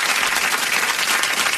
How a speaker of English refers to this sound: It is pouring out there. This is a real storm. We got a real storm happening. That's legit, man.